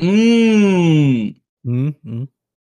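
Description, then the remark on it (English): A person lets out a long, drawn-out yawn with a falling pitch, followed by two short voiced exhales. Fairly loud, with no talking. “Who's yawning?”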